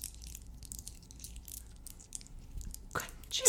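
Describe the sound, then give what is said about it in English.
Chewing of Reese's Pieces, hard-shelled peanut butter candies, with soft scattered crackles that build into louder, crunchier bursts toward the end. “Now begins the chewing.”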